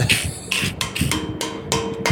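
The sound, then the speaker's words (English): Pots and pans being struck by people walking around outside, about six loud metallic clangs in a loose, uneven rhythm, each leaving a bright ringing tone that hangs between hits. No voices. “We're just hitting pots and pans.”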